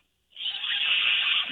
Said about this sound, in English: A little squeak there. Yeah, it's a little squeak. I don't know if it counts as a whistle.